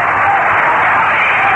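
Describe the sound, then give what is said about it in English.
A stadium crowd of baseball fans at Shea cheers after Gary Gentry's base hit in the sixth inning, a loud, steady roar of massed voices and clapping that holds at an even level throughout, with no individual voices standing out. “And the fans, a great crowd here at Shea, show their enthusiasm.”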